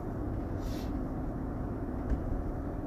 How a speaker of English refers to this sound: There's a tractor trailer making a slow turn from the slaughterhouse to the rendering plant.